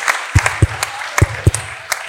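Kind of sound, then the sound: crowd, audience applause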